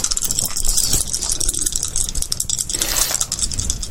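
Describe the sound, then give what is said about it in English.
Several dice rolled for perception checks rattle and clatter continuously for about four seconds, a dense, bright rolling noise of many small clicks tumbling against a hard surface, with no voices. “Give me perception checks all around.”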